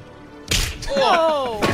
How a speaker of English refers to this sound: Whoa! He punches a reporter.